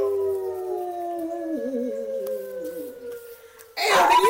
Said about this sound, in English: Hey, a dog in the background in this location.